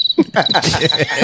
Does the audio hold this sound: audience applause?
no